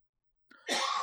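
A single harsh cough bursts out after a moment of silence, preceded by a short sharp intake of breath; no one speaks.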